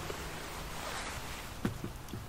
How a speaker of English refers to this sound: Oh, it's starting to rain.